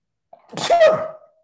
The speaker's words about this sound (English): I'm going to sneeze.